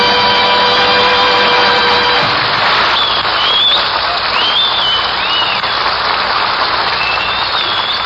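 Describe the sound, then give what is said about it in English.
A large crowd at a race roars and cheers loudly and continuously as a racer comes down the straightaway to the finish line, a dense wash of noise with scattered whistles rising above it; a steady horn-like tone sounds briefly at the start. “The crowd is going mad as he comes down here.”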